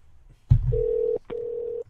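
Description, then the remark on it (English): A phone call connecting: a sharp click, then two steady electronic ringback tones separated by a brief pause and another click, clear with no voices. “Call phone.”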